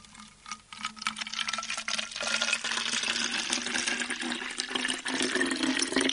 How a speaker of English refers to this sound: Now, I want to fill that bottle about halfway up with lukewarm water. So not kettle water, just sort of hand hot? Yeah, sort of 30, 40 degrees centigrade, that sort of temperature. Okay, so we'll do that now as well.